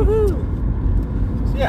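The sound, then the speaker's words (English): A loud car rumbles past, its low engine roar filling the whole short moment, with a voice briefly speaking over it at the start and again at the end. “That was a nice loud car.”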